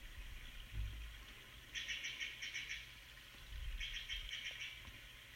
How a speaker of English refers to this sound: Birds are chirping.